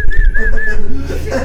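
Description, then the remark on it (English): A person whistles a short, wavering tune, the bright tone sliding up and down for under a second before trailing into softer, lower notes over a low background hum. “I'm whistling.”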